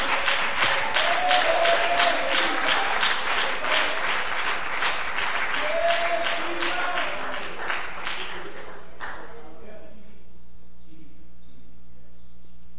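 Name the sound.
audience applauding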